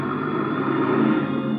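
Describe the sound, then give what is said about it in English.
A car engine hums and rumbles steadily as the car winds down the long driveway of a villa, a continuous, fairly loud drone that stays even throughout with no voices. “Just as I get there, I hear a car winding down the long driveway, so I duck into the bushes.”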